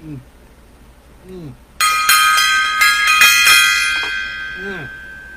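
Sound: gong being struck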